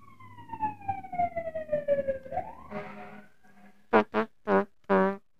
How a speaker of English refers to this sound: Let's let this fire truck go by.